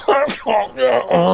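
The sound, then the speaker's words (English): A voice imitates a man's weak, feeble cough: three or four short, groaning vocal bursts in quick succession, fairly loud, with no other talk around them. “He has a wee cough, yes, or a weak cough.”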